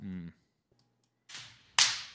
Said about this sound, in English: That's the trainer? Yeah. He's just slapping him in the face while he's hanging upside down? Yeah. This is bad training.